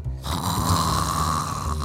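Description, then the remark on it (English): A group of people fake snoring together on cue, playing asleep, a loud, rough, sustained low rumble with a nasal buzz that holds steady for a couple of seconds before easing slightly. “If you can hear me clap once, if you can hear me clap twice, if you can hear me play asleep.”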